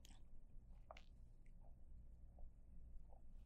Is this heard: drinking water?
yes